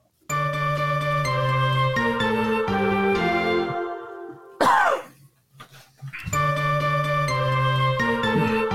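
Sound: cough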